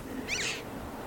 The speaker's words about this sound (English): It's a chough. It's a chough. There.